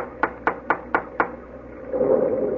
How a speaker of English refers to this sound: Well, no, we've come this far. Go ahead and knock at the door. I promise you, if a ghost answers, I won't be surprised.